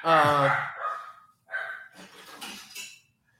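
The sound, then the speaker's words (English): A dog gives a loud bark, followed by a few shorter, quieter yelps and some scuffling noise over a few seconds. “Anyways, since my dog's barking”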